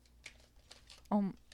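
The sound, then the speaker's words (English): Soft, papery shuffling of tarot cards as a few scattered flicks and riffles, quiet throughout, with a short burst of a voice cutting in near the end. “Oh, I didn't split the deck, but I am shuffling, just letting you know.”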